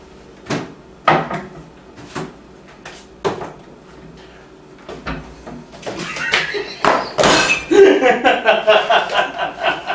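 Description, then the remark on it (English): A few sharp knocks and bangs, then a loud burst of crashing crockery as plates break, with ringing, clattering pieces scattering for several seconds. “Hey, these are my plates, man!”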